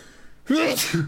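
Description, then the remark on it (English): A person lets out a loud, imitated sneeze, a sharp voiced 'ah' rising into a breathy burst, followed by a shorter trailing vocal sound. No other sounds accompany it. “And you start sneezing all over him.”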